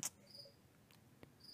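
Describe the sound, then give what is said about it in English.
A cricket chirps indoors in short, high, trilling bursts, one near the start and another at the end, fairly faint against a quiet background with no voices. “Are you going to slaughter an entire family of crickets tonight? Is another one back?”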